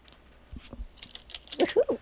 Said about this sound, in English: Anywho, ignore the typing in the background.